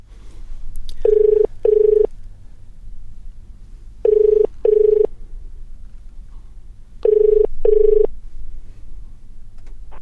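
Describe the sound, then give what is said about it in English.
A telephone ringing tone as someone phones a friend sounds in three double bursts, a steady tonal brr-brr repeated at even intervals, clear and fairly loud over a low background hum, with no talking. “Let me phone a friend.”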